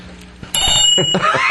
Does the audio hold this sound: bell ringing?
yes